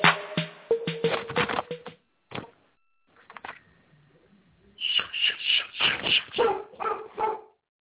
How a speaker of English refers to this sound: That's my dog in the building. Y'all hear my Akita back there barking.